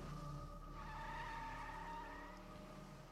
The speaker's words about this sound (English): Panicked, the girl and her boyfriend looked at each other, and without a word, he got in put the car in drive and punched the gas.